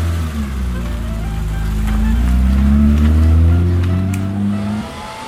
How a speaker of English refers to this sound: you've got that dryer on too hot. It's burning my scalp. There. How's that? Oh, that's fine.